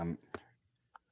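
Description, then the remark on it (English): A sharp snap of a keyboard cover clicking back onto a tablet, followed about half a second later by a softer second click. A voice trails off briefly just before. “Let me just get the keyboard back on because I don't want to put this screen down on my desk.”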